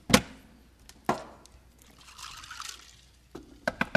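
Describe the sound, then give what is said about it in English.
A quick series of sharp knocks on a door sounds at the end, after a couple of isolated thuds and a soft trickling, pouring sound in the middle. No one speaks. “Oh, someone is at the door.”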